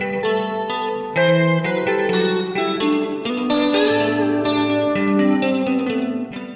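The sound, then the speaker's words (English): A sustained, shimmering electric guitar line with a classic 90s sound and a chorus effect plays steady notes over a full band, one note bending upward, bright, with no voices. “Third, the electric guitar has a classic 90s sound with a chorus effect and a bend thrown in for good measure.”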